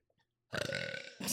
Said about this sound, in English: I'm going to belch again.